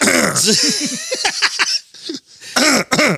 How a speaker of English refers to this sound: I gave up on editing out every time you clear your throat. Let me clear my throat.